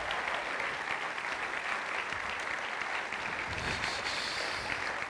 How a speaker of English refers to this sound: Well, come on, let's give a great clap.